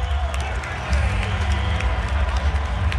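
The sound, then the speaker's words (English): A basketball arena crowd at a Friday night Chicago Bulls home game against the Brooklyn Nets fills the air with a steady, dense roar of chatter. It grows slightly louder after the first second, with scattered sharp claps or clicks and a low rumble underneath. “Last Friday night, the Chicago Bulls faced off against the Brooklyn Nets.”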